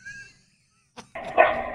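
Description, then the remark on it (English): A prize-winning dog named King lets out a short high whine, then after a pause a sharp, loud bark rings out, trailing into a longer harsh bark. “Dog wins a prize, and he thinks he can just bark over everybody.”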